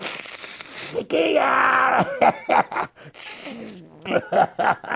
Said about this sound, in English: Pardon me, I gotta blow my nose again.